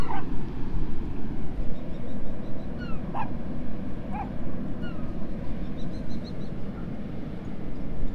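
Dog barks and a few high whimpering yelps come through sporadically over a steady, heavy roar of surf and wind on the beach at Harlyn on a chilly, windy morning, with dog walkers on the shore.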